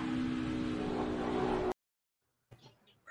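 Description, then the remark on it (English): A loud, steady engine roar onboard the No. 11 race car at speed, looking out the back as a wreck happens behind it, droning with a strong low hum, then cutting off abruptly to silence before a man starts talking. “This is on board the 11 car looking out back.”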